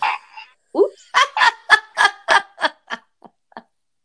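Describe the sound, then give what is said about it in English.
A novelty toy fart sound, emitted by a sensor when the toy's lid is popped: a raspy, honking series of about ten sputtering bursts, loud at first and then tapering off into a few faint puffs, with no talking. “Just pop the lid to activate the sensor and emit a hilarious bottom burp.”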